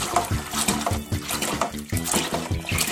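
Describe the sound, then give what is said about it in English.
Thick, syrupy, mud-colored liquid pours steadily into a bag, with a continuous wet rushing and low, irregular glugging pulses throughout. “So now almost everything has been poured into the bag.”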